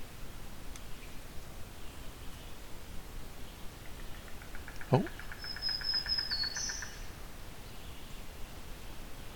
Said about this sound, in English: But we're definitely on territory of several songbird species. Oh. It's a great crested flycatcher somewhere here.